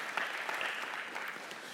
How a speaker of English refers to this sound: So good job, Connect Church. I want to give you a little, give yourselves a little round of applause there.